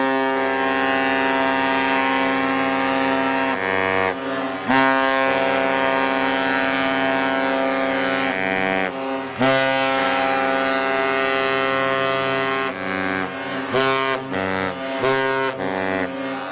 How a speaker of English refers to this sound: So Richard Hall from Iowa helped us out big time. He digitally dubbed the dual horn for us. Here's that one.